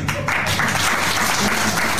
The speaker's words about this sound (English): I think they're applauding that he's leaving the stage.